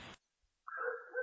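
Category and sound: animal, dog barking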